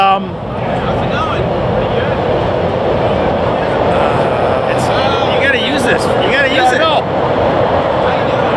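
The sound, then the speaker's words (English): A train rumbles past, a loud, steady roar with metallic squeals rising over it midway through. Voices may be faintly present beneath the noise. “Here comes that a been, train.”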